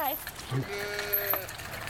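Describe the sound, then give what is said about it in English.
A sheep bleats once in a drawn-out, wavering cry, with faint voices murmuring in the background. “So what will you do with the sheep?”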